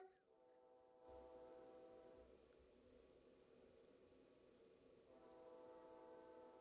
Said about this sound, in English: Oh, my. Just as we did that, the train went by. And it's blown its horn. Honest to God.